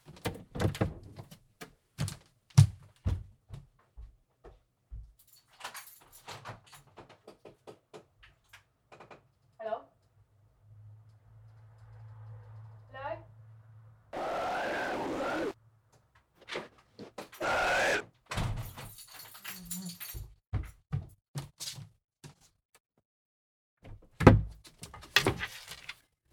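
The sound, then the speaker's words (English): A door opens and closes amid a series of sharp knocks and clunks, with a brief rushing scrape and a low hum in between, moderately loud. “I thought the door went, but it might have been next door.”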